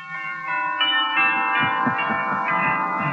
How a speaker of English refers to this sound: I understand. Wedding bells.